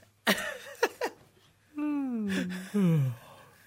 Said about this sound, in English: I've been quiet this entire time. Yeah, you've been yawning. Yes. You can't see him, but that's what he's doing.